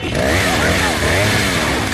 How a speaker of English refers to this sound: Chainsaw.